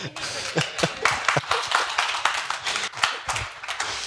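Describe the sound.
A church audience claps steadily for several seconds, a dense patter of many hands with a few sharper, louder claps standing out, and some voices mixed in.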